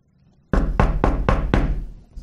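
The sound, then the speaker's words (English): Five firm, evenly spaced knocks on a house door as officers serve an arrest warrant in Liberty, Clay County, Missouri. The knocks are loud and resonant with a short ring after each blow, followed by a brief quiet tail with no talking. “No answer. Where'd he go?”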